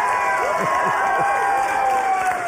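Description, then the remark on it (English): A crowd bursts into steady applause mixed with cheering and whoops, a dense, continuous wash of clapping with scattered high shouts rising above it throughout. “You applauded like that.”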